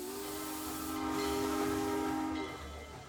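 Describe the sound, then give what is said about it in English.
A steam locomotive on a steam railway line running from Oldsford to London lets out a long, steady whistle over a constant rushing hiss of steam. The whistle cuts off near the end, and the hiss carries on alone. No one speaks. “People travel to go on the steam railways, but also to understand a little bit more about the relationship with steam and locomotive transportation and how it made our industry so successful.”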